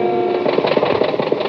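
The engine of a cosmic surface car running on ordinary fuel runs with a rough, rhythmic chugging, quick pulses over a steady, buzzing drone at a fairly loud, even level, with no voices.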